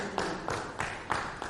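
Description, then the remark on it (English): A church audience claps hands together in a steady rhythm, five sharp beats about a third of a second apart, over a dense, continuous background wash. “Clap your hands, it's okay.”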